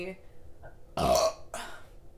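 A loud burp bursts out after a brief quiet moment, followed by a shorter, softer second belch-like gust of sound before fading away.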